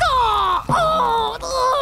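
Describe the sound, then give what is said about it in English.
A crow caws in pain from its stomach while swaying in midair, three harsh, drawn-out cries with a strained, wailing pitch that dips and rises, loud, with no one talking. “Black Crow screamed and swayed in midair, gliding up and down”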